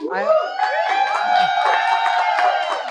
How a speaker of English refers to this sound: Payne was asked the obvious question early: what does being a woman mean for Canada's labor movement? A question that was met with wild applause.